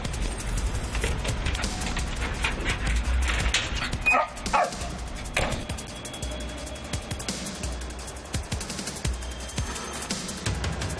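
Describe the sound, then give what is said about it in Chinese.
Leon, a six-and-a-half-year-old English Springer Spaniel police explosives-search dog, whimpers and gives a few short whiny yips over a steady, noisy background hum at Hong Kong International Airport; no one speaks. “咁我呢个拍档咧，佢叫做 Leon， 今年6歲半，系一只英国士宾格犬，负责搜索爆炸品嘅。”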